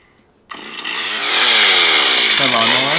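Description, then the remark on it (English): A chainsaw starts up abruptly after a brief quiet moment and roars loudly and steadily, its engine pitch rising and dipping as it revs, continuous to the end. “A chainsaw.”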